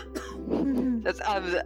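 A sudden nasal snort breaks into sputtering coughs and throat-clearing, close and fairly loud, mixed with strained, laughing vocal sounds as if someone choked on a drink.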